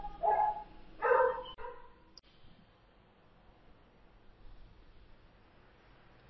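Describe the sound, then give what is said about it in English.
Two sharp barks from a dog in the background ring out in quick succession near the start, followed by several seconds of quiet background noise with a faint click or two. “Inspiration comes to me now with a dog barking in the background.”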